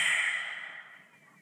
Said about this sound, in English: Open mouth, exhale, tongue out all the way, release everything that no longer serves.